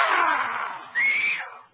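A loud, piercing scream sound effect, two drawn-out shrieks in quick succession, the second rising higher and holding before fading out, with no talking.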